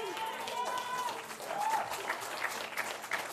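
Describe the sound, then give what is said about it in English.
An audience claps steadily and loudly, with scattered voices calling out over the applause throughout the short burst of crowd response. “Oh, come on, you can say an amen. You can clap. You can shout. We can do a little bit better than that.”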